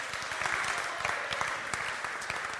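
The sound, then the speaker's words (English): A crowd applauds steadily, a dense wash of many hands clapping with no pauses, holding an even, moderate loudness throughout. “Yeah, yeah, you should be applauding.”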